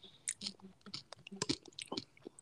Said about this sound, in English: It was just Halloween, so I'm munching on a little Halloween candy, peanut butter M&Ms